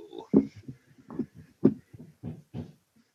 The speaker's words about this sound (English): That wasn't racist Vince knocking this time.